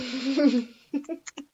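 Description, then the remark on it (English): A drawn-out, breathy voiced yawn that rises and falls for nearly a second, then trails off into three or four short, soft huffs and murmurs. “Oh, sorry, I started yawning. Oh, that's a very serious yawn.”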